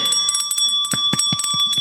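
A small handheld bell rings rapidly several times, its bright metallic tone sustaining over quick repeated strikes, close and fairly loud with no one talking.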